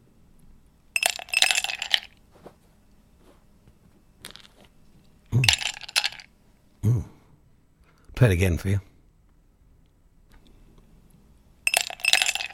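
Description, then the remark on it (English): Ice cubes clink and rattle against a glass in several short, bright bursts separated by pauses, fairly loud, with a man's voice speaking briefly in between. “It could be a number of things, but it's ice cubes.”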